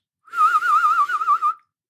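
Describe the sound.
A person whistles a fast, warbling trill around a steady pitch for just over a second, imitating a birdsong with rapid wavering. Clear, with no other sounds.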